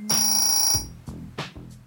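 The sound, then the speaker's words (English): An old doorbell rings with a loud, bright metallic clang that rings out for most of a second, followed by two shorter, softer strikes that quickly fade. “That's an old doorbell ringing.”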